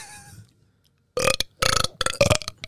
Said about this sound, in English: I can burp on command. Yeah, you did that for the talent show. Do it.